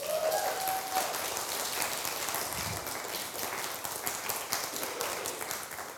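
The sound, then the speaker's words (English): A crowd applauds steadily for several seconds, a dense patter of many hands clapping at once, fairly loud and sustained without any voices standing out. “Go on, give her a clap.”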